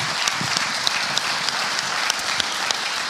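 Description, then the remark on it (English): An audience applauds steadily, a dense wash of many hands clapping at an even, sustained level with scattered sharper claps standing out, and no voices. “Yes, you can give her a round of applause.”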